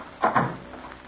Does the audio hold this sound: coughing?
no